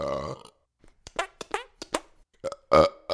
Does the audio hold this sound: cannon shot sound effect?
no